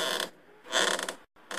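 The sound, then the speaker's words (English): Loud creaking, like a stiff knee joint grinding as it bends: a short creak, a longer drawn-out one, a brief gap, then another creak starting. No one speaks. “Came back with a creaky knee.”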